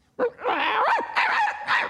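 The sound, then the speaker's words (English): A person imitates a dog, doing Dinky's voice for the PBS series Wishbone, with a quick run of loud yips and whiny barks, the pitch sliding up and down between bursts, with no speech. “And then there have been times where they didn't have a voice like a dog, Dinky's voice on Wishbone, the PBS series.”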